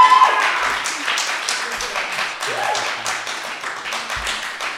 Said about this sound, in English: If you think Shaun of the Dead, clap now.